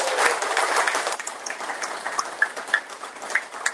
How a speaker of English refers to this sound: Give a round of applause and a thank you to Henry's Bait